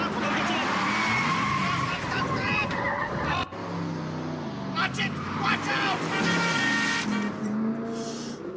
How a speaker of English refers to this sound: You're gonna wreck this car. You're liable for it if you wreck it.